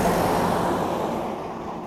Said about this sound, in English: And I'll just wait for this car.